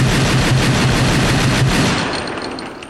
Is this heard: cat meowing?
no